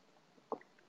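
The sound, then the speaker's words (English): A single wet gulp of a drink, briefly breaking an otherwise quiet stretch with a soft gurgling swallow. “That was an awfully big gulp.”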